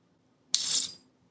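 A beer is opened slowly: a sharp crack gives way to a bright, airy hiss of escaping gas that holds for about half a second, then fades out. No voices.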